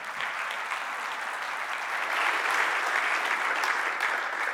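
An audience bursts into sustained applause during a morning service, many hands clapping in a dense, steady wash that swells slightly partway through and holds for several seconds without any talking.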